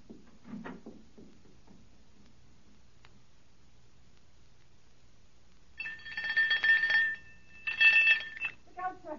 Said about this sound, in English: Ring the doorbell. I'll hear it. Ring it loud.